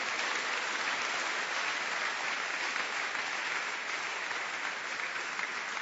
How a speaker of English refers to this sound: Oh, clap your hands properly for him.